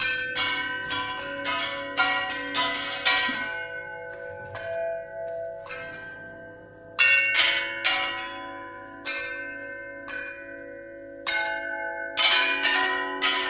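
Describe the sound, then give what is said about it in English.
An elephant strikes a gong made from a circular saw confiscated from an illegal logging operation, again and again at uneven intervals, each loud metallic clang ringing out and overlapping the next, with no voices. “Some of the instruments in this unique orchestra were custom-made for the elephants, including a gong fashioned from a circular saw that had been confiscated from an illegal logging operation.”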